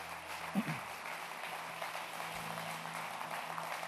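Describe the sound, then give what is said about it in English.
A crowd claps together in a steady, dense wash of applause that keeps going at a fairly even, moderate level, with a low hum underneath, as people come up to the front to the altar for prayer by a ministry team. “If you guys give them a clap real quick as they come up to the front.”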